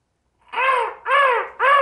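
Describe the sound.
A person imitates a faint crow call heard in the distance, giving three loud, harsh, drawn-out caws in steady succession, each call slightly arched in pitch with brief gaps between them.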